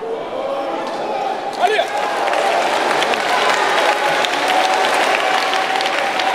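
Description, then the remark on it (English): An audience claps steadily throughout, a dense, sustained patter of many hands with a murmur of crowd voices mixed in and a brief louder burst early on. “I don't know what you're clapping about.”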